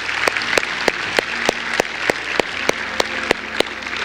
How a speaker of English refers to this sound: Hey, can we give God a round of applause?